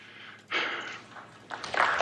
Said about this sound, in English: Why are you breathing so hard?